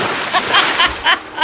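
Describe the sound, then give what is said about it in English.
A voice imitates rhythmic water splashing of backstroke swimming strokes: five breathy, hissing splashes in steady succession over a continuous wash of noise, moderately loud. “I'm doing a backstroke.”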